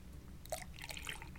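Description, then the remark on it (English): Beer being poured into a glass, a short burst of splashing, gurgling liquid that starts abruptly and trickles on for about a second, fairly quiet. “Plus that fantastic pour sound effect that you've got going on there is really happening.”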